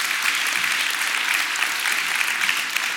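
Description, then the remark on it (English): A sustained burst of audience applause, dense and steady with many hands clapping at once, filling the space evenly from start to finish with no voices standing out. “Yes, that's good to clap for.”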